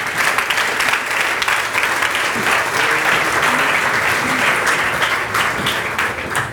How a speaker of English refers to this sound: So can we clap for them for no apparent reason, for them walking up?